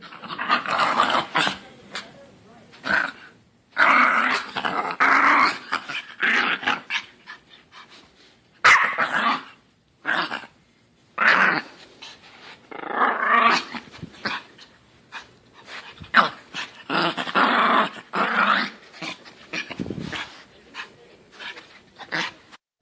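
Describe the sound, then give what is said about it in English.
A frightened stray dog wedged under a car's gas pedal growls and snaps in a long run of harsh, agitated bursts broken by short pauses, loud and rough throughout with no voices. “She wedged herself under the gas pedal, growling and snapping in an effort to protect herself from her assailant.”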